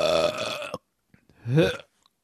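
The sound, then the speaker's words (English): A long, loud, rumbling burp after chugging beer, followed after a short pause by a second, briefer burp that rises in pitch. No talking, just the belches. “We'll count it, and the Scudigera collapses in a heap of STDs and burp shockwaves.”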